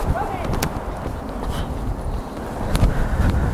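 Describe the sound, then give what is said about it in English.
Wind buffets a microphone outdoors on an evening photography outing, a steady loud low rumble that swells and gusts throughout, with a few brief sharp ticks breaking through the roar. “And it's windy, and it's not been windy all day, but as soon as I've come out to do something and make this episode”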